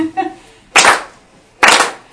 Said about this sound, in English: So let's clap.